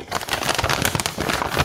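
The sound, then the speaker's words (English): Continuous crinkling and crackling of a wrapped-up brown paper bag as it is torn open and unwrapped, with dense sharp rustles running steadily throughout and no voices. “I believe you've got a brown paper bag there that's all wrapped up that you've been waiting to open.”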